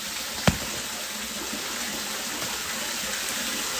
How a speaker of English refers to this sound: So we're starting this bathtub up, you guys. Grabbing this hemp salt, get 2 cups. Pour it in the bathtub.